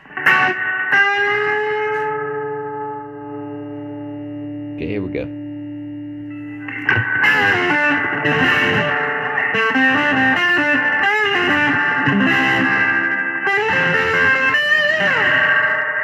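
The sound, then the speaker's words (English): A distorted electric guitar played through a 65 Deluxe Reverb amp, on the bridge pickup position, sustains a long chord with a washy reverb tail, then breaks into a busy, driving riff of quick strummed chords and bends; a man says a few words briefly at the start. “Let's turn the reverb back. I think I had too much reverb going on it.”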